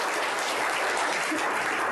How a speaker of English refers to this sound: Okay, thank you, team. Yes. Round of applause for our team.